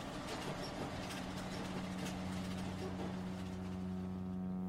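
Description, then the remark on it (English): A New York City ferry's engine drones steadily on the water, a low, even hum with a constant rumble and wash of noise running throughout, unbroken. “Lastly, a newer addition to New York City's transport options is the expanded ferry system.”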